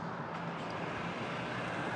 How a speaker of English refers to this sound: Okay, there's a car coming up here.